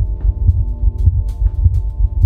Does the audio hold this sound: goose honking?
no